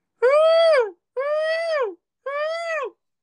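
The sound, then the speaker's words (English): A voice imitates a spoiler alarm with three loud, wailing calls, each about two-thirds of a second long, rising slightly and then falling in pitch, separated by short pauses. “So, I'm going to do my spoiler alarm sound.”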